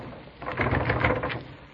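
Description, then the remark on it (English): A locked door's handle is jiggled and rattled against the lock, a quick cluster of clattering clicks lasting about a second, with no voices. “Here, let me try that door.”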